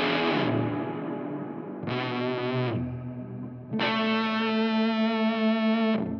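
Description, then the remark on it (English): Three sustained electric guitar chords played through a Gallows in the Morning pedal, which combines a double overdrive and reverb, ring out one after another, each washed in heavy, smeared reverb with long decaying tails that blur into the next strum. No voices. “I feel like you can get some of that … kind of drenched reverb.”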